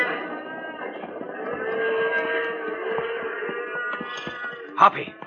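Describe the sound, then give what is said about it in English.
A herd of cattle lowing together in a steady, overlapping chorus, with the rumble of the animals moving underneath and one louder bellow rising near the end. “Nothing will stop these critters now. Right. Let's clear off to the edge of the herd.”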